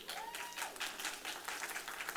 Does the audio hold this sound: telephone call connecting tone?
no